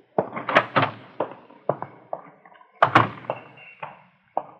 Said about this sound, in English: Come on, I'll open a door for you.